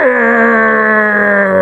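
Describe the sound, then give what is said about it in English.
A man imitates Godzilla's roar with his voice: one loud, sustained, buzzy growl that dips in pitch at the start, then holds steady for about a second and a half. “No, that was my Godzilla.”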